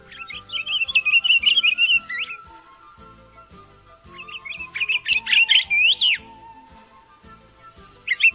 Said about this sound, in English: The pine grosbeak's song is a sweet-sounding warble, and its call is a three-note whistle.